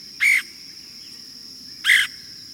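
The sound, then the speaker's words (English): Two harsh, raspy calls from a red-headed woodpecker, spaced about a second and a half apart, loud against a quiet background hum. “The red-headed woodpecker is a striking bird.”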